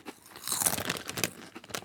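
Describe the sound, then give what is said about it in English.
Crisp crunching as someone chews a snack, a run of dry, bright bites and crackles repeating steadily over a couple of seconds, fairly quiet, with no talking. “Here's one for saucers. Remember, eat over the box.”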